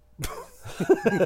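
A sharp, loud cough bursts right up against the microphone, followed by a rougher, throaty second round of coughing and clearing that trails off.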